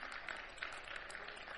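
An audience clapping together, a dense, steady patter of many hands with a few sharper accents, fairly soft and continuous, with no voices over it.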